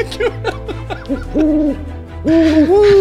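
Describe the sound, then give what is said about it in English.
An owl hoots clearly: a quick run of short hoots, then two longer, drawn-out calls, with no one talking. “Can we have an owl instead?”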